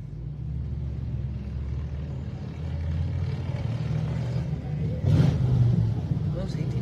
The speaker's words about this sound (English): Motorcycles. They're legal, right?